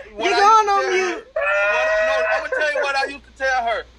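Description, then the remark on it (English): A voice imitates a daughter crying over the phone, with drawn-out, wavering wails in three bursts separated by brief breaks, loud and strained with a bleating, pitch-bending quality. “She'll start crying on the phone like I'm whooping her.”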